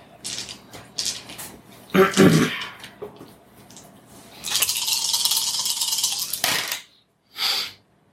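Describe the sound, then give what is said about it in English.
Dice are thrown down onto the ground during a game roll, clattering and rattling in several bursts: a sharp tumble, a longer rolling rattle, then a brief final skitter, fairly loud, with faint voices in the background. “Or you get two dice edge on that, because you have evidence.”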